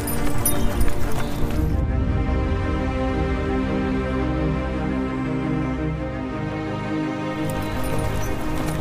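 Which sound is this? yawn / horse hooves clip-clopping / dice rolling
horse hooves clip-clopping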